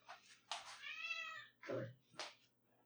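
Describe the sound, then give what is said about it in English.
A cat meows loudly, a drawn-out wavering cry followed by two shorter, sharper calls, with a faint low hum in the background. “Why doesn't the cat talk?”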